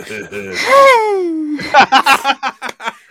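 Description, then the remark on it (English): A voice imitates heavy breathing on a phone call: a long, drawn-out moaning exhale sliding downward, then a quick run of rhythmic, breathy panting gasps, fairly loud. “How many heavy breathing phone calls have they got?”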